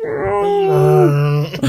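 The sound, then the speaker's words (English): A fat cat called Chonker Meowgi lets out one long, mournful meow, a loud, sustained wail that holds steady before sliding downward in pitch and trailing off, with no one talking. “He just meows miserably.”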